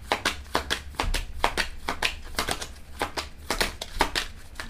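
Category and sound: household object, shuffling tarot cards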